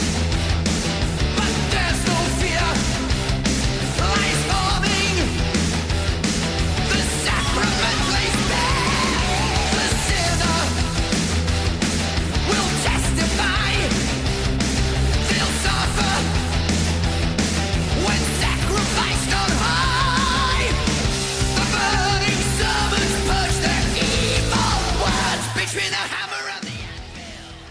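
A loud heavy metal song plays throughout, with driving distorted guitars, pounding drums and a dense, full sound that stays steady before cutting off abruptly near the end. A yelled vocal cuts through.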